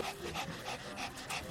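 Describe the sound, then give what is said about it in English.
An older female dog named Niecy pants steadily at the vet as her nails are about to be clipped, quick breathy huffs repeating in an even rhythm for the whole moment, fairly soft with no voices over it. “Older dogs, because they don't exercise the same extent as younger dogs, the nails tend to get a little bit long on them.”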